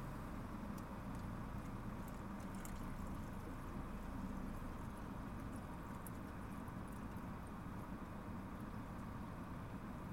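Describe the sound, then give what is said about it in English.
Water pours steadily into pouches in cold weather for about ten seconds, a continuous, fairly loud rushing gurgle with no pauses and no voices. “I gotta fill these pouches up.”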